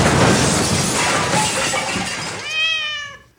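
A loud, rough burst of crashing noise as a bed's wood rips out of the wall and the bed collapses onto the floor in the middle of the night, lasting a few seconds before a high, wavering creak-like squeal falls in pitch and cuts off.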